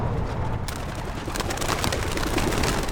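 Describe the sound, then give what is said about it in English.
After a brief pause, a flock of homing pigeons released from cages bursts through an open door in a sudden, loud burst of wing flapping that keeps fluttering densely, with a few faint coos underneath. “The pigeons burst through the open door in a blur of wings.”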